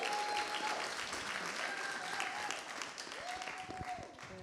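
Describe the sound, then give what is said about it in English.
An audience claps steadily for several seconds to welcome a woman up to share her testimony: a dense, even patter of many hands at a fairly loud level, with a faint tonal whine briefly rising in the background near the end. “Let's give her a clap.”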